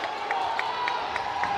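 A Cookeville basketball crowd cheers during a game in a steady, dense roar, with sharp accents repeating at a quick, even beat, like rhythmic clapping or stomping, running through it.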